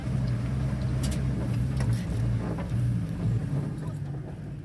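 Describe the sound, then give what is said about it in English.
A homemade armored truck's engine drones steadily, a low rumbling hum with rattling and clanks over it, heard from inside as it drives with Syrian Democratic Forces fighters towards the center of Raqqa. “It's a tight squeeze inside a homemade armored truck with a couple of her fighters driving towards the center of Raqqa.”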